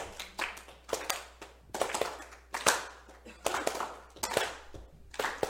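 An audience claps together as percussion in loose, uneven bursts, a crisp crackle of many hands that swells and dips roughly once a second for several seconds, with no talking over it.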